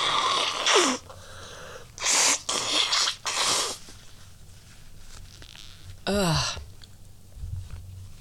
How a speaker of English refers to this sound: Have you ever had those sneezes where like you sneeze and then shit just flies out of your face like at an alarming rate and then like gets everywhere?